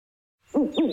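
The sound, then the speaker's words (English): After a brief silence, an owl gives two full hoots in quick succession, loud and clear with no other sounds around them. “I think he said Whiteman Park is a hoot.”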